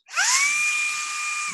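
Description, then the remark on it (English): A Shark cordless wand vacuum runs: its motor spins up fast into a steady, high-pitched whine over a loud, airy hiss, holding for about a second and a half with no talking. “It's called the Shark. It's like a wand, a little wand vacuum. I'm going to play it.”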